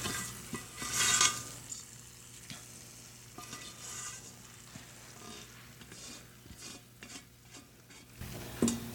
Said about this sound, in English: I don't know if you guys can hear if the microphone is picking this up, but as it hits the yogurt, it's all sizzling, which is kind of lovely itself.